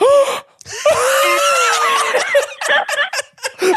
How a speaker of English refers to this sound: I think that was a genuine reaction. That was a genuine gasp from me because I just was like so amped about that.